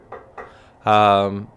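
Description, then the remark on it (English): Two quick, fairly soft knocks on wood, spaced a moment apart, followed by a brief voiced sound. “It's been a very long time since I've had a ticket, knock on wood.”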